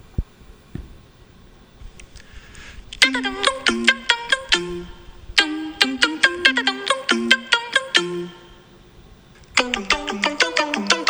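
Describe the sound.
Voices imitate iPhone alert and ringtone sounds, singing bright, quick staccato notes in two melodic bursts separated by a short pause. The singing is clear, with no talking.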